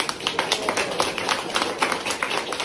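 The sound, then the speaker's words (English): A crowd at a meeting applauds a trans activist in a steady, dense patter of many hands clapping, bright and crackling, holding at an even level throughout with no voices standing out. “My favorite part of it is the applause.”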